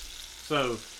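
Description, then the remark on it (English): Food sizzles steadily in a pan, a soft, even hiss throughout, with a short, falling tonal squeak cutting in briefly around the middle. “So it's frying here, and you're kind of just feeling the whole surface of the bowl.”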